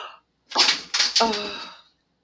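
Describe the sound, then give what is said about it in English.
A cat knocks a metal stepladder over onto the tunnels: a loud bang, then two more crashing impacts in quick succession, with a bright metallic ring that fades out over about a second. “The catch is knocked over the stepladder onto the tunnels.”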